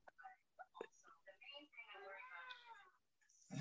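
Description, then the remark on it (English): A cat gives a drawn-out meow lasting over a second, fairly loud, after a few short clicking or tapping sounds, with a brief sharp noise at the end. “well, if you don't show your cat some love. She won't stop.”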